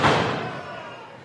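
A wrestler's big boot kick lands on an opponent during a pro wrestling match, with one loud, sharp thud, and the impact rings and fades out.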